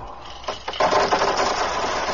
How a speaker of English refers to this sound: Slave, pour out the rubies from the jar.